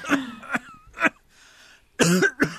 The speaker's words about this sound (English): I had a productive cough for a long time, which is the most disgusting thing ever.